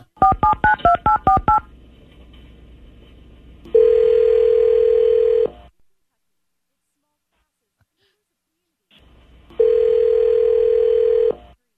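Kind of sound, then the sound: signal or alarm, telephone dialing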